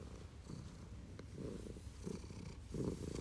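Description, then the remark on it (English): A male cat named Shohei purrs steadily while sitting with the speaker, a low rumbling buzz that swells in soft rhythmic waves with each breath, continuous and fairly quiet with no voices. “There's Shohei purring.”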